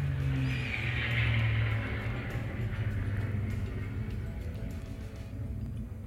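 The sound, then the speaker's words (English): An airplane rumbles past overhead, heard from inside a home studio, a steady, broad roar with a deep low drone that swells early on and then slowly fades, with no voices. “Did you hear that? That was an airplane.”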